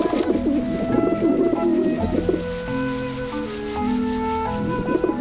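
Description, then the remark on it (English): A flock of pigeons coos and bustles as they peck at bread sprinkled around a balloon on the ground, with continuous overlapping calls and fluttery activity that stays fairly loud throughout, and no one speaking. “The birds fly over, pecking madly at the bread, until the balloon pops and the birds fly away.”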